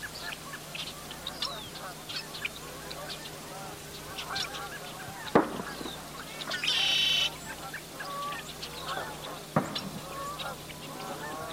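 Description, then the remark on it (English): A flock of geese honks continuously at sunrise amid a busy outdoor bird chorus, with two sharp, loud pops cutting through partway along and a brief steady whine in between. “And I don't know, I was really lucky the one day when I went out and got a cow and a dog and all these other little birds and geese coming up with the sun.”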